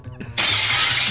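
Glass shatters with a sudden loud crash after a brief quiet moment, followed by a dense, bright spray of tinkling fragments that continues to the end.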